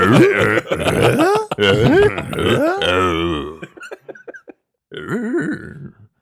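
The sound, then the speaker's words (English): A voice imitates a gnoll's grunting, Tim Allen-style: a run of gravelly, throaty grunts and growls over several seconds, then a brief pause and one more short grunting burst, fairly loud. “Can all the gnolls sound like Tim Allen moving forward?”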